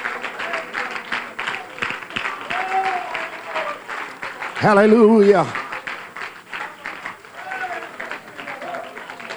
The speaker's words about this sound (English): Come on, somebody worship the Lord in the house. Give the Lord a good hand clap of praise. Hallelujah.